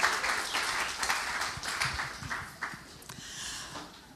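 An audience claps for a helper who has just finished a demonstration, a dense, continuous patter of many hands at moderate loudness for a few seconds, with no voices over it.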